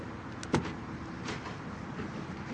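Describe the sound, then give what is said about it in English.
A single sharp mechanical clunk of a car door lock releasing, followed by a softer shuffle as the car door opens, all over a steady low background hum with no voices. “You'll have to unlock it”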